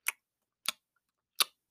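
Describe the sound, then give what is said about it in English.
A voice imitates a slug crunching a leaf, like a human chomping on celery, with three short, crisp, crackly mouth bursts, unevenly spaced and moderately loud, with silence between them. “Sorry, I'm not good at crunching leaves.”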